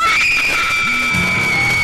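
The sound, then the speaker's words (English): A loud, shrill scream held steadily for about two seconds, piercing, with a low murmur of other sound beneath it. “And now the screaming starts.”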